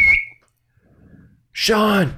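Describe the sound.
A coach's whistle gives one short, shrill blast at the start and quickly fades. After a brief near-silent pause, a man starts talking close by.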